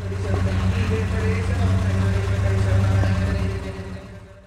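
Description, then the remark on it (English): A car engine idles loudly at the Barrett Jackson Auto Auction in Scottsdale with a steady low rumble and harmonic drone, plus faint crowd chatter behind it; the engine sound drops off near the end. “And that's because this is the Barrett Jackson Auto Auction in Scottsdale.”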